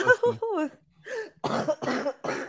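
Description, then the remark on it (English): A short vocal sound, then three harsh, raspy coughs in quick succession, fairly loud, each a separate burst with brief gaps between. “Oh, God, I'm going to try so hard not to cough through this thing.”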